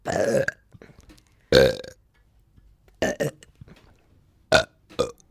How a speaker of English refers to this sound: Can you make yourself burp? Yeah. Do it.